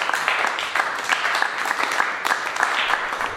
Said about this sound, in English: folks, let's keep that applause going for Dwight Hayes. Awesome as always, Dwight. Awesome.